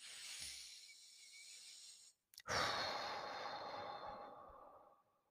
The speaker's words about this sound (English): Keep breathing. Another breath.